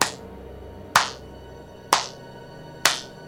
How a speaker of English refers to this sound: In the distance, we hear someone slow clapping as they approach.